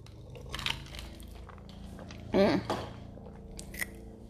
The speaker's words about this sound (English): Hold on, I gotta take a sip.